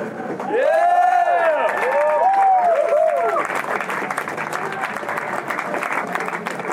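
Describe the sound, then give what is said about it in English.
A crowd at a poetry event applauds loudly and steadily, with whoops and cheers rising over the clapping in the first few seconds before the cheering fades and the sustained applause carries on. “Ladies and gentlemen, please give another round of applause”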